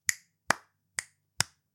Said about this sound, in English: Every time I click my fingers, a rat with laser eyes is dissected thinking it's the only one.